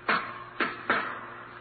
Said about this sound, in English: Then the knock on the locked door of the jury room.